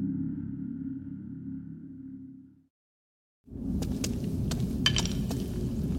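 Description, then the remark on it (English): A low, steady hum cuts out into a brief silence, then rough rumbling returns with sharp, hollow clinks and clatters as bones are kicked and knock together in an ossuary. “Try not to kick the bones.”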